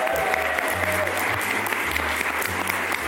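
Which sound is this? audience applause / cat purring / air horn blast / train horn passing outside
audience applause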